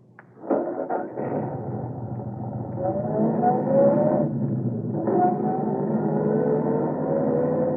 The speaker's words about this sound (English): And I'll be following along in my car.